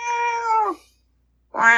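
A cat meows twice up close, a long drawn-out cry that slides downward, then a short silence before a second meow begins. No one speaks.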